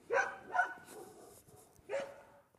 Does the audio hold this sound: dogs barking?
yes